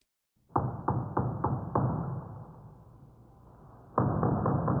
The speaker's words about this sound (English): there's a door downstairs. Ah, now they'll break it again. Oh, every few weeks I have to get new doors.